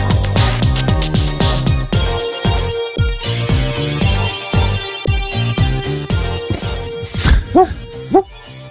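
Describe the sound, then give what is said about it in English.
Upbeat music with a steady, thumping beat plays throughout, and near the end two or three short, yippy dog barks pop out over it, sounding like added sound effects rather than a real dog. “It's better to have a simulated dog than a real one.”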